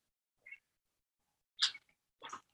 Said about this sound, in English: I was shaking my bottle a minute ago, like, yeah, like we're both drinking it right now. Amazing. Let's take a sip, actually.